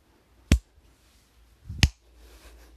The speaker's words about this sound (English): And cut to Ray and said, no, he's not. That's stupid. And Hoppa Monkey slow claps.